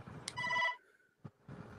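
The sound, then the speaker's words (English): A phone rings once in a short electronic chirp, a bright, steady tone lasting under half a second, with low background noise and murmuring before and after. “Shut up, phone.”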